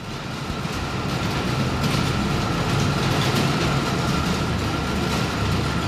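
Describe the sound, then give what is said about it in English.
A small trolley train rumbles steadily through the underground tunnels of a cava cellar, its wheels rattling and clattering on the track in a continuous, enclosed-sounding roar with no one speaking. “We're on a little train.”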